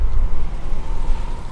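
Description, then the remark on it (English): A steady, low rumble of idling car engines from cars lined up around the block at a drive-through food assistance operation, running continuously with no voices and no distinct passing or honking. “St. Joseph's is a 100% drive-through operation. Today, cars line up around the block.”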